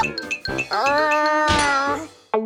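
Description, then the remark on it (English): A voice imitates the hiccups of the story character Hasty, who starts hiccuping again after drinking no-hiccup juice. A few short, abrupt vocal yelps are followed by a long, squeaky, pitched whine, then one more sharp hiccup at the end. Loud and alone, with no talking. “Hasty started hiccuping again.”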